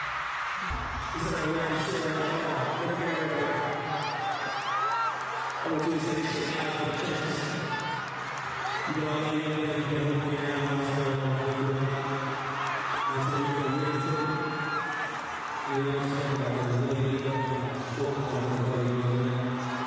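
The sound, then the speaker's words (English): A large crowd roars and screams nonstop as a rapper gets down on one knee to propose, loud overlapping cheers and whoops with shouting voices rising and swelling in waves for the whole stretch. “This is him getting on one knee right now. That's why the crowd is going crazy.”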